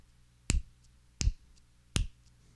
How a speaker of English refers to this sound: Okay. Slapping an orange. So I know what you're thinking. Yeah, they're thinking right now. Did that come from my cupboard? Was that in my refrigerator? You should go check.